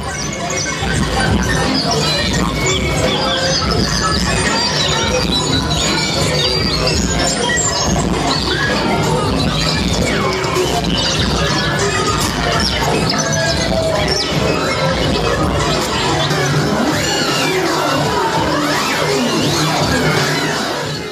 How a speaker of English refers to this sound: But similar concept, a bunch of electronic toy instruments. And you were doing some fun vocals, some shrieking and screaming. I'd actually like to play a little video clip of that right now.